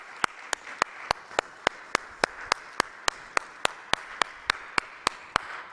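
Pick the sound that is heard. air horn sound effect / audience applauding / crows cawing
audience applauding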